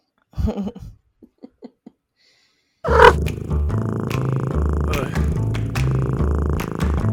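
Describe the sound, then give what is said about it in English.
A cat purrs loudly, a steady rhythmic rumble that runs for several seconds after a few soft, brief sounds and a short silence. “They're cats, like literal cats.”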